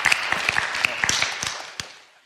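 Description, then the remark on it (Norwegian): A burst of audience applause: dense, crackling clapping from many hands with a few sharper claps standing out, tapering off and thinning out over about two seconds. “Jeg synes det kjempebra, så jeg synes vi skal gi en applaus.”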